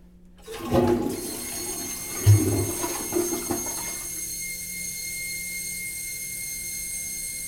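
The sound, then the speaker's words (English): A hotel-room toilet in Orlando flushes with a loud, gurgling rush of water that drains away after a few seconds, leaving a steady, high-pitched whining hum as the tank refills. “When you flush the toilet, you get a great after effect sound.”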